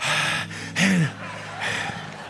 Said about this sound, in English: And he's up here breathing heavy.